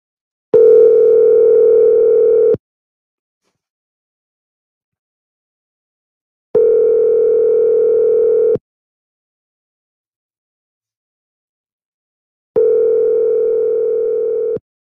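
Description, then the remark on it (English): A phone ringback tone for an unanswered outgoing call: three long, steady two-second rings separated by four seconds of silence, loud and clear with no one picking up. “Well, unfortunately, Claudia is not answering.”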